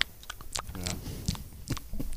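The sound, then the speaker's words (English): Loud, wet gum chewing right up against the microphone, a steady run of smacking clicks and squelches over about two seconds with no one talking. “Especially if he chewed gum the whole time.”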